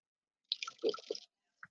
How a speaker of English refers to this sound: Big sip of coffee before that one. I know. I needed that.